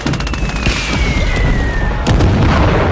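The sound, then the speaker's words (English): During an enemy mortar and artillery barrage, a thin, steadily falling whistle cuts through a constant roar of battle noise, then a heavy artillery shell explodes with a sharp, booming crack and a deep rumbling tail. “A shell burst shatters your eardrums.”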